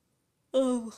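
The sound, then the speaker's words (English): A single voiced yawn rises out of silence, a drawn-out breathy tone sliding slowly downward in pitch before trailing off. No speech accompanies it. “Oh, yawn break.”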